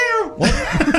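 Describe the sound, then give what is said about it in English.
A person does a brief, drawn-out meow imitation with a falling pitch as their buzz-in animal sound for a game, quickly followed by noisy bursts of laughter or coughing. “How about a cat?”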